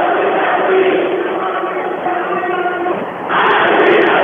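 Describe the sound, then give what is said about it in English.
A large crowd at a basketball game between the Vikings and the Tigers, with under a minute to go, chants "I believe that we will win" in unison, loud and sustained, the massed voices forming a steady roar that swells slightly near the end. “Crowd is starting the I believe that we will win chant.”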